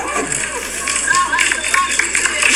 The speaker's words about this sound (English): The few people that clapped. The few people that clapped. Thank you. Those are true heroes.